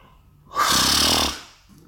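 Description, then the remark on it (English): A person yawns once: a long, breathy, open-mouthed exhale that swells quickly, holds for about a second, then fades away, with no talking. “Oh my God, I need yawn again.”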